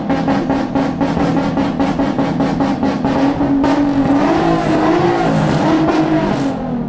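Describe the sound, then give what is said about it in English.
A parked car's engine idles loudly with a rapid, pulsing rumble, then revs up, the pitch rising and wavering as the motor is gunned repeatedly. No one speaks. “Whoever that is got to turn that car off, man.”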